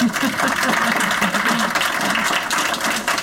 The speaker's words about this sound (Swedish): Wow. Det är ändå värt en applåd. Ja.